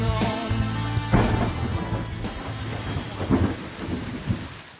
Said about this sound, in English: Started again. Rain coming down.